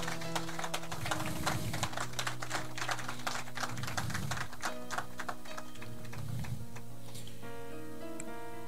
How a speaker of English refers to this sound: Let's clap for our Messiah, the head of the church.